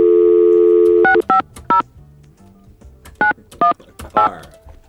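A steady telephone dial tone hums for about a second, then touch-tone keypad beeps sound as a phone number is dialed to place a morning call: three quick tones, a pause, then three more, with no talking.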